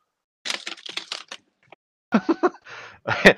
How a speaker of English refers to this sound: A part of me thinks that noise just now was Sora furiously typing it into his data slate.